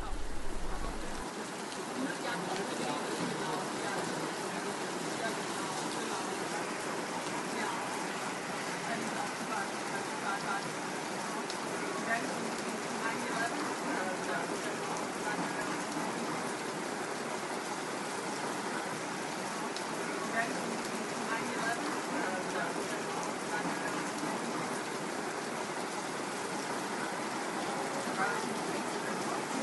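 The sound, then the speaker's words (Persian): Steady rain falls continuously for half a minute, a dense, even hiss of countless drops pattering on surfaces, fairly loud with no pauses or other sounds standing out. “لطفاً یک دقیقه به صدای باران گوش کنید.”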